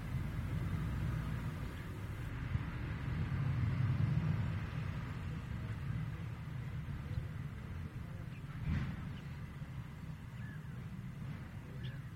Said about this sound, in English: You are listening to the closed border between the Czech Republic and Austria, recorded on the 4th of April, 2020. Because of lockdown, only some lorries, those carrying essential supplies,